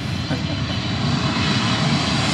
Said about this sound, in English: It's like the Japan Airlines 777-300ER coming in from Tokyo.